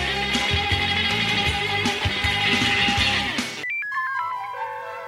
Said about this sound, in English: Isn't it funny? You hear a phone ring and it could be anybody. But a ringing phone has to be answered, doesn't it?